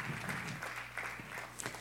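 A brief patter of audience applause, a steady wash of many hands clapping at moderate volume, with a low hum underneath and a few sharper claps near the end.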